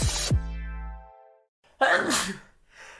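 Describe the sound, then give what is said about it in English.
A single loud sneeze bursts out after a fading ringing tone, followed by a brief softer breathy sound. “While you sneeze, can I fart?”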